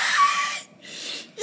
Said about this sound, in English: So … screams. Still screaming. I'll allow it.